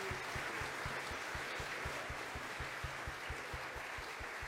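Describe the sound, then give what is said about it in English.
A crowd applauds a choir and orchestra steadily for several seconds, a dense wash of many hands clapping at even loudness, with a faint regular low thump pulsing underneath. No one speaks. “Let's give them one more wonderful applause.”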